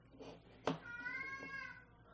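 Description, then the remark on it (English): A cat lets out a single drawn-out meow, rising and then holding a steady, whiny tone at modest volume, preceded by a brief sharp knock. “Poor cat. I know. Poor cat.”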